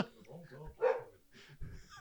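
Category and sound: animal, dogs barking and whimpering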